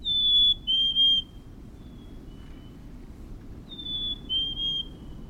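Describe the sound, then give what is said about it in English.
A black-capped chickadee sings its clear, high two-note whistle twice, each phrase stepping down in pitch, over a steady low rumble of background noise. “Even in the ruthless grip of winter, when the snow crunches beneath your boots, an ember glows in the lilt of a black-capped chickadee.”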